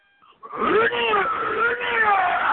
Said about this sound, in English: let it hear your chair slide across the floor. Do you want me to rip it up again for you? Yeah, let us hear the chair. Yeah, rip it across the floor again.